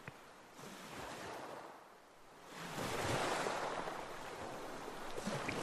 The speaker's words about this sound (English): Anyway, this isn't that big of a ship, is it? Well, you have the wind and the water.